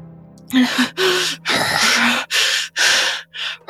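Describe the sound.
A voice imitates a woman panting as she holds onto the edges of a table: about six loud, breathy gasps in an uneven rhythm, with some voiced catches in the breaths and a faint steady hum beneath.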